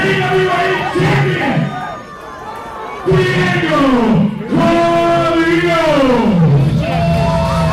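A loud crowd cheers and roars continuously, many voices overlapping in rising and falling shouts and yells that swell in waves for several seconds without letting up.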